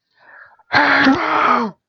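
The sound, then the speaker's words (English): A voice imitates a screaming flea as a rating of five screaming fleas out of five: a soft breathy lead-in, then one loud, strained, wailing screech lasting about a second with a raspy, buzzy tone before cutting off. “Can you do the screaming flea out of a 5?”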